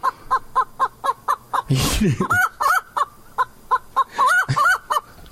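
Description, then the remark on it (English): A chicken clucks in a quick, steady run of short calls, broken midway by a loud noisy burst, then resumes with higher, squawkier clucks; fairly loud. “Again, I don't speak view cluck.”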